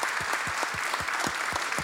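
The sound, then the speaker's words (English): A crowd claps steadily, a dense wash of many hands with a few louder, rhythmic claps standing out at an even beat throughout, sustained and fairly loud with no voices. “I think he deserves a big round of applause.”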